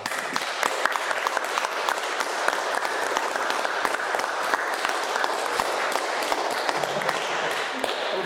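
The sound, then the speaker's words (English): Many people applaud steadily for several seconds, a dense, even patter of many hands clapping with no break in the sound. “Before we do the poem, it would be nice if you could please be fitting just for a round of applause for all these people that are so very special and really touched our lives.”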